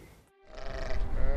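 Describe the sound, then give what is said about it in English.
A sheep from a bunch of sheep that keep breaking out through an electric fence bleats, a wavering, drawn-out call repeated twice in quick succession over rumbling wind or handling noise outdoors. “This is our bunch of really naughty sheep.”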